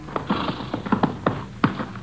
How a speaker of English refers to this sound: Then on the afternoon of October 10th, 6 days after the killing, we stopped and unloaded our horses at Eagle Flat in Hudspeth County.